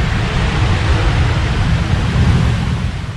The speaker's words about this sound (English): I'll just pause for a minute. Plane landing sound.